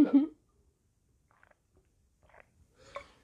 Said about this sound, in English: So if we were doing, and I have to cough real quick. Pardon me.